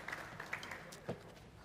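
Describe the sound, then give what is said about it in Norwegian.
Soft, steady applause from an audience welcoming guests at a Christian meeting, a dense patter of many hands clapping at once, with a few sharper claps popping out of the wash. No one speaks. “Gi dem en herlig velkomst her. Klapp.”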